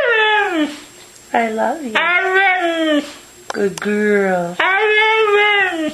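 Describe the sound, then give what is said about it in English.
A dog, Mishka, produces a series of drawn-out, whiny vocal phrases with rising and falling pitch, loud, sounding almost like speech, in several bursts separated by short pauses, as its owners treat it like a human. “I want to play another short clip for you, this time of dog owners treating their now famous dog, Mishka, with over 100 million YouTube views, like a human.”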